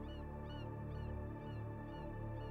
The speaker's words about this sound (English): I don't hear anything except for the birds.